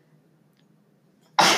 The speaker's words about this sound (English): Bless you. I sneezed.